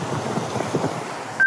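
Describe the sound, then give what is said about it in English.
Steady rushing of wind and a fast-flowing mountain river in the high Himalaya, with glaciers nearby, during a running race, with a gusty low rumble underneath, cut off at the end by a short electronic beep. “Check out this weather. The river. Glaciers tumbling off mountains.”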